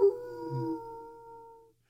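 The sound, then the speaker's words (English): A person imitates a wolf howl: one sustained, steady-pitched note held for nearly two seconds that slowly tapers off, performed alone with no talking. “What's that sound?”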